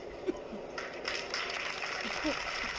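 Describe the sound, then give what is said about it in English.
A steady wash of applause, many hands clapping in a dense, continuous patter that holds for a few seconds at moderate volume, with a few faint, indistinct voices mixed in. “We get a applause for what?”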